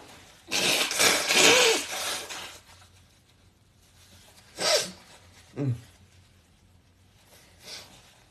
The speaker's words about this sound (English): Like, hold on 1 second. I have to blow my nose.